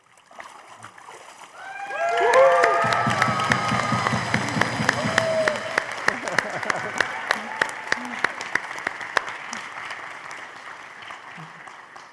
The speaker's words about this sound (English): Good job cheering. I didn't even just stay there a second. And there, now you can go and sit down. I didn't even remind you guys to cheer, but that was fantastic. Cheer as loud as you can. Remember what we're celebrating.